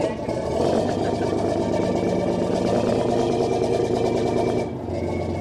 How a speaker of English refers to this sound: The fishing vessel Sea Hound docks at the Chatham Fish Pier on Cape Cod, Massachusetts, to unload her catch as a huge steel bucket swings down onto her deck.